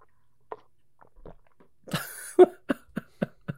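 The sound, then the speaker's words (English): A man drinks loudly through a straw: a loud slurp, followed by a steady run of five gulping swallows at an even rhythm, with a few faint clicks before it and no talking. “Is he not the loudest fucking drinker”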